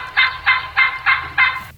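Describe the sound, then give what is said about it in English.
A young male turkey (jake) yelps five times in an even, steady rhythm, each call a raspy, clear note, loud with no other voices around. “That's a Jake's a male turkey. That would be a male turkey. Yelping? Yep.”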